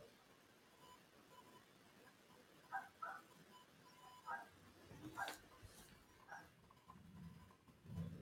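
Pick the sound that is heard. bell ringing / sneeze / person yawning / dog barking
dog barking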